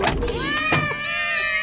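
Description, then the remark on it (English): A single long, drawn-out cat meow, loud, rising and then sliding down in pitch before trailing off, with no talking around it. “Ugh, always cats on the brain.”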